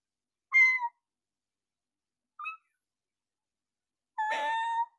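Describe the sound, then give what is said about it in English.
A voice imitates a kitten's meow in three short, high-pitched squeaks: one near the start, a tiny faint one midway, and a longer, rougher mew at the end, with silence between. “you have a good kitten noise.”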